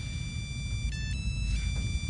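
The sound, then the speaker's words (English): A camera phone ringtone plays a steady electronic melody, shifting pitch a few times over a low background rumble, with no one speaking. “What is that? Bev bought me a camera phone.”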